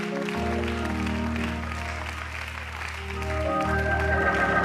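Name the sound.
audience clapping hands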